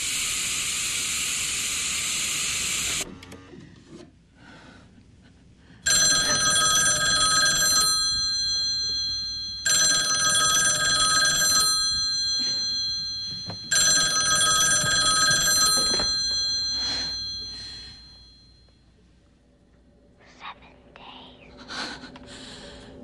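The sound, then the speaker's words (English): A telephone rings three times in long, steady bursts separated by brief pauses, loud, with a hissing noise before it and faint breathy sounds trailing afterward; the phone call that comes at the end of watching a video. “And then at the end of the video, you get a phone call that says 7 days or whatever.”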